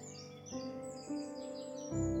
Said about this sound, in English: You might also hear the ribbit of frogs, or the beautiful sing-song voice of the blackbirds who nest nearby.